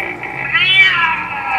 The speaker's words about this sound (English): That is a kitty, yes.